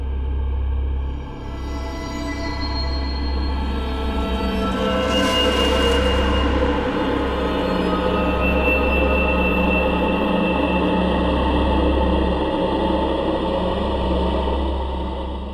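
A train pulls away with a heavy, steady engine rumble that builds and holds, a brief hissing burst rising partway through, loud with no voices.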